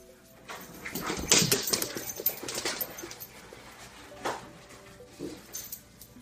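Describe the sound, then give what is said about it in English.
A poodle puppy plays with an older poodle, with bursts of scuffling and light clattering and a few soft, high whimpers scattered through; no one speaks. “Here's a puppy playing with an older... What are these? Poodles? These are poodles.”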